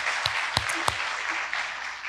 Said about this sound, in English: but our group has just done a fantastic job week to week. And would you just give them a big round of applause? Thank you for leading us every Sunday.